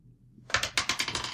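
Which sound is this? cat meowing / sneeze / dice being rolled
dice being rolled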